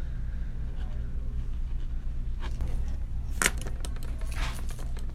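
A pen writing a signature scratches across paper in a few quick, brisk strokes, one sharper stroke standing out, over a steady low rumble of background noise.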